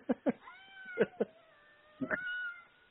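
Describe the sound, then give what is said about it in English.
A cat meows in three quick bursts, short chirping pairs that trail into drawn-out, wavering cries, with no talking over them. “Damn cat.”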